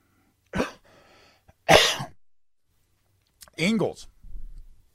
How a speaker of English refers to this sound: I'm coughing here, excuse me.